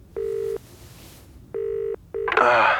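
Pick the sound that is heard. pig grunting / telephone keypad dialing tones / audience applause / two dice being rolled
telephone keypad dialing tones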